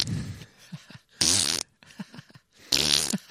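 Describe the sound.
Wet, sputtering farting noises made with the mouth to imitate farting from a sewer in a Pennywise parody skit: several short low bursts and two longer, loud, raspy blasts, with brief pauses between them and no talking.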